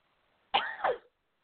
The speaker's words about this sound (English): As I cough into the mic